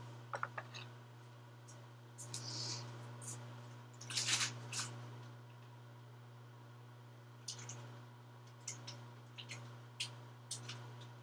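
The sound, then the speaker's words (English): Scissors snip in scattered bursts, a few crisp cuts early, a louder cluster in the middle, then several quick snips toward the end, all over a steady low electrical hum. “We need some scissors.”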